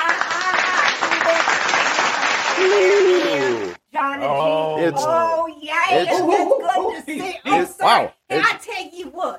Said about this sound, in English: Ladies and gentlemen, an applause.